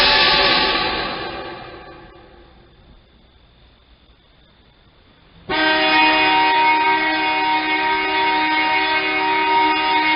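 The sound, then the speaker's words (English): A loud, rich blare fades into near silence, then a horn cuts in abruptly as a sound cut in a film, holding a steady, brassy, many-toned note for the last several seconds. No one speaks. “Our sound cut with a horn brings us back to the kids and Forbidden Planet.”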